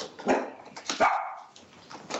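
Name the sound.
dog barking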